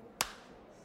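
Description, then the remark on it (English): A single sharp hand clap, made so the audio can be aligned later, cracks out once, a quick bright burst that dies away almost instantly, with only faint background hiss before and after. “Okay, so it's for anyone who's wondering as we're doing that, that is so we can actually align the, or I can align the audio later”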